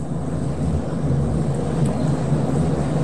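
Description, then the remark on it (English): A train rumbles steadily throughout, a deep, continuous low roar with a faint hiss on top and no change in loudness. No one speaks. “can you make the train stop running during these?”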